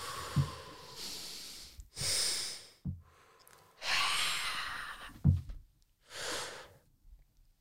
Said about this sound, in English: Let's do our pre-podcast breathing exercises